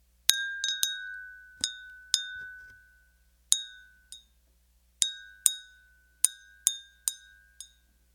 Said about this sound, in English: But I'm just going to ring the bell and just allow this idea. Maybe set an aspiration for yourself. When you hear the sound of this magic bell, have confidence that it's coming true.